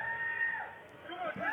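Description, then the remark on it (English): A man who is on fire, his shoe still burning, screams in agony. Long, strained, high-pitched wails bend and slide in pitch, continuing almost without pause throughout, loud and slightly muffled. “The screams are nuts. The screams do sound very painful.”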